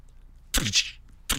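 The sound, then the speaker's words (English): A person vocally imitates the heavy, forceful thwack punch sound effect of the Indiana Jones films: a loud, sharp, noisy burst with a brief breathy tail, followed a moment later by a second shorter smack. “Yeah, that's what I was saying, is those indie movies, really, it's a lot of punching, and they're all those very forceful, heavy sound effect thwack punches, you know?”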